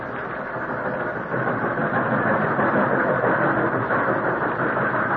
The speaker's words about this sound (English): Oh, it seemed as though the long train trip would never end.